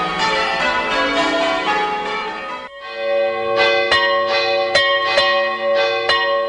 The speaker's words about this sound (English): how it tells of the rapture that impels to the swinging and the ringing of the bells, bells, bells, of the bells, bells, bells, bells, bells, bells, bells, to the rhyming and the chiming of the bells.